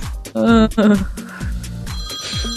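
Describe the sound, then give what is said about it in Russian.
An iPhone ringtone chimes with a bright, melodic pattern of repeating tones, clear, while people speak over it. “Это мой телефончик.”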